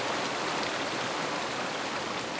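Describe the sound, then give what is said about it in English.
Heavy, steady rain from winter storms off the Pacific Ocean pours down on California in a dense, unbroken hiss, loud and even throughout with no pauses or voices. “They began far away over the Pacific Ocean and doused the parched West Coast like firefighters opening a massive hose.”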